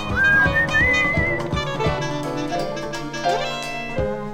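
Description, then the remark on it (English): A man whistles a melodic line that glides and bends over a full band backing with steady drums and sustained chords in a 1982 recording, the whistling prominent near the start and returning briefly later. “And he does some cool whistling in there.”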